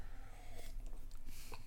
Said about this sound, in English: Well, let me have another sip here.